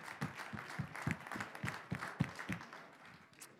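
Light applause from a small crowd for the event's sponsors, a steady patter of claps at a fairly quick, even rhythm, soft overall and thinning out toward the end, with no one speaking.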